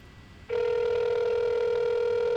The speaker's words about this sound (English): Oh, what is that when it beeps like that? Like somebody's beeping in. Oh, it must mean I'm beeping in. Yeah, he must be on the other line. That's why it does that.